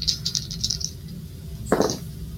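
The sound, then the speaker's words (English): A quick series of light clicking rattles as three dice are shaken in a hand for a game roll, followed by one brief louder clatter as they tumble onto a surface. “Unfortunately, I rolled an 18, which is not a success.”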